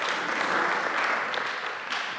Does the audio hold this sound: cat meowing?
no